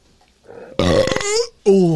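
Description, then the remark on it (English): A loud, drawn-out burp rumbles, followed after a short pause by a second, more tonal belch that cuts off at the end. “And burping is like.”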